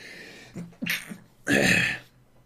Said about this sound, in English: I'm going to sneeze.